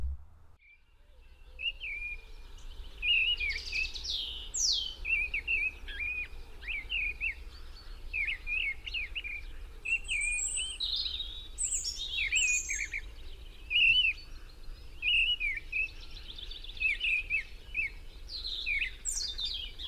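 A missel thrush gives a harsh, rattling alarm call, much like an old-style football rattle, in rapid repeated bursts, continuing without pause over a faint low background rumble, with no voices present.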